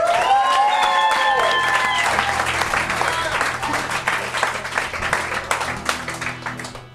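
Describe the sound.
At a live recording at the Edinburgh Festival, an audience bursts into loud, dense applause for a special guest, with whoops and cheering voices rising over it at first; the clapping carries on steadily, then thins into scattered claps by the end.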